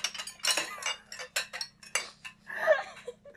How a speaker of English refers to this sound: Here's your ASM portion of the evening. Clink! Clink, clink. ASMR, you're in a crowded dishwashing place.